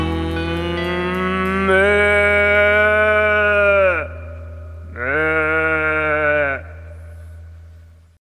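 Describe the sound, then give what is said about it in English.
A cow moos twice in long, drawn-out calls, the first lasting a couple of seconds and the second slightly shorter after a brief pause, over a steady low drone that fades at the end, played as the radio segment the Daily Moose. “and ending with the Daily Moose.”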